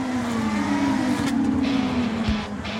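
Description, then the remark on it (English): Loud, steady electric race-car whine with a humming motor tone that dips slightly in pitch, over a rushing wash of tire and road noise, with no voices. “Yeah, that's right. Electric race cars.”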